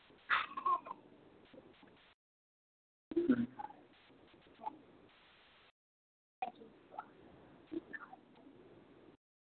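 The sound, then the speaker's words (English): A cat makes soft chirping, meowing sounds in three separate bursts broken by brief silences, fairly quiet, with no one talking. “This is a real cat.”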